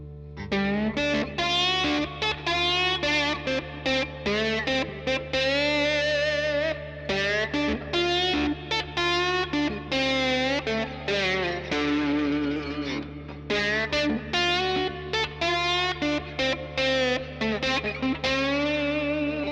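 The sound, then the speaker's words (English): An electric guitar played with a glass slide, running through an FSC KB1 overdrive pedal into a Vox AC15 amp, plays a continuous phrase of gliding, sustained notes with gritty overdrive, rich in ringing overtones, loud with no voices. “And it works with metal too, and some people prefer metal, but there's these very interesting overtones that you get with a glass slide that I prefer.”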